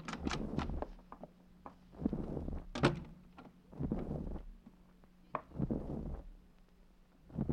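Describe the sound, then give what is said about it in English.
An unlocked door is opened, with a series of clunks, rattles and scrapes spaced about a second apart over a low steady hum. “Open up. The door's unlocked.”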